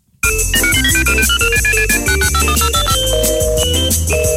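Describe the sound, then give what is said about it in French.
A telephone rings with a bright, melodic electronic ringtone, a quick sequence of tones playing loudly and continuously for several seconds with no one speaking. “Moi aussi, même j'en suis certain, puisque oui, ça sonne.”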